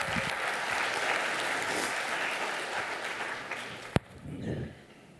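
A crowd applauds steadily, a dense wash of clapping that holds for about four seconds, broken by one sharp loud crack, then tapers off into a few scattered claps.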